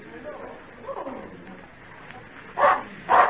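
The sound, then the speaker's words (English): A dog named Badger lets out two loud barks in quick succession near the end, following a stretch of quieter, indistinct vocal sounds. “I've not heard Badger bark like that before.”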